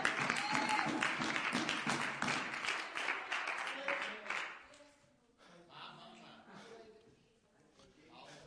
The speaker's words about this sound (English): Give the Lord a hand clap in here. Give the Lord a hand clap in here.